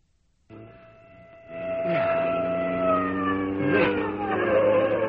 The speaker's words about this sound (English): The meadow. The tree. That siren. That must be the police. The police!